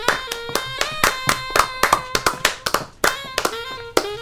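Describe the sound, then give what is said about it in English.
Audience applause comes as steady, sharp claps at about four per second, with a bright ringing tone sustained beneath them. No one speaks. “That's also, let's give that a hearty applause.”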